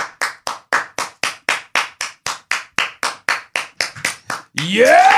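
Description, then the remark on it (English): Steady, rhythmic hand clapping as a man walks in, about twenty sharp claps in a row at an even pace, fairly loud, ending in a burst of cheering and a sweeping whoosh. “Let's give him a round of applause as he comes in.”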